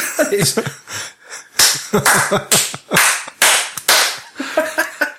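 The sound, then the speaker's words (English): Light hand claps land as several sharp, crisp slaps, irregularly spaced, mixed in with voices talking and laughing over them. “Sorry, listeners, that was a light clap.”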